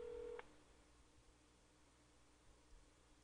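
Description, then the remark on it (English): A short, steady electronic phone tone sounds for a fraction of a second at the start as an outgoing call is placed on a phone, then cuts off into faint background hiss. “Well, I'm on the group call, but I'm also calling him with my phone.”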